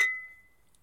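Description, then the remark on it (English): A single bright clink of drinking glasses touching in a toast, followed by a clear ringing tone that fades away over about half a second. Fairly quiet, with no voices. “All right, well, cheers, I suppose. Cheers.”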